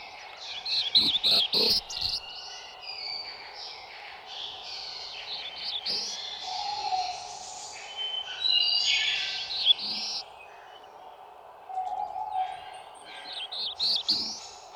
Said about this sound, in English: Now, the husky, drawled, I am lazy, of a black-throated blue warbler.